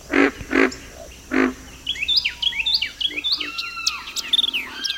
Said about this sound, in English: By this time, other birds have awakened, and Carolina wrens and white-eyed vireos are declaring their territories. A pig frog adds to the amphibian and avian chorus of the Big Cypress Swamp.